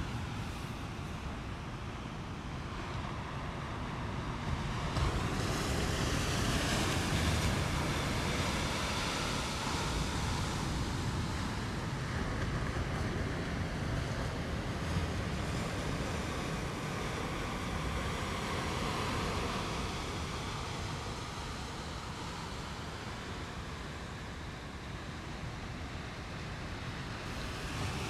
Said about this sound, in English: Here are the sounds of the ocean for 30 seconds.